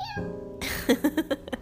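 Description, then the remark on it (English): A young child's voice imitates a cat, starting with a drawn-out, wavering meow and then a quick run of five short, rhythmic mews, fairly loud. “Are you a kitty cat today?”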